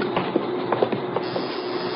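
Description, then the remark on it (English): A door buzzer, rung to let police officers push the door open, drones in a steady, harsh electric buzz for the full two seconds, with a few faint clicks and rattles breaking through. No one speaks. “I'll ring the buzzer. Just push on the door.”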